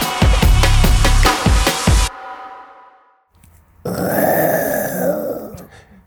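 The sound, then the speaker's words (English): A person attempts a lion roar with their voice: a loud, rough, pulsing growl for about two seconds, a short pause, then a longer, strained, higher-pitched groaning roar. “That wasn't a lion.”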